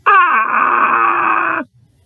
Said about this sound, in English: Who's screaming? That's just my dad.